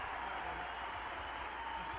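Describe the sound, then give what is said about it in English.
A large crowd applauds, many hands clapping in a dense, continuous wash of sound that holds steady throughout with no individual claps standing out and no one speaking. “Check out that crowd.”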